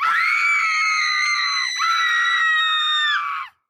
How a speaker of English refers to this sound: But when I stressed on my words being true, they went to check the ceiling. Minutes later, they shrieked.